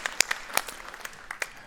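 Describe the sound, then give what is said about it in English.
An audience claps briefly, a scattered handful of sharp, crisp claps at an uneven pace rather than sustained applause, fairly soft overall, with no talking. “Clap right back at you.”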